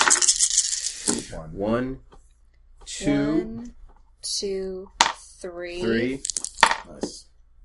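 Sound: dice being rolled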